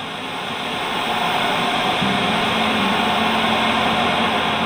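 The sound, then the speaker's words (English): Steady radio static hisses at an even, fairly loud level throughout, a dense wash of white noise with a faint low tone humming underneath partway through. No voices. “and that when we turn on our radio and hear that white noise in the background, that we're listening to echoes of the Big Bang.”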